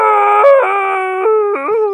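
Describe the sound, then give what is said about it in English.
A person imitates a happy zombie groan: one sustained, loud, tonal moan lasting about two seconds, its pitch wobbling and stepping up and down in a howl-like way, with no other talking. “That's a happy zombie.”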